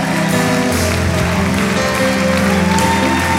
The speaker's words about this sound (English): Come on, everyone, clap your hands. Shout to God with joyful praise, for the Lord Most High is awesome. He is the King of all kings. So we praise Him by clapping our hands.